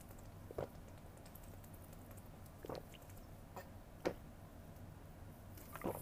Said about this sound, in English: Apologize, I'm a loud drinker.